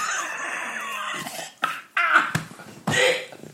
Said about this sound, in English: Jesus Christ. I've had a terrible cough.